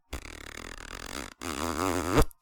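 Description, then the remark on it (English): A loud fart: a low rumbling stretch, a brief pause, then a louder, buzzy, wavering blast that rises and cuts off sharply, with no talking. “Love is farts.”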